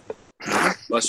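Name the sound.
sneeze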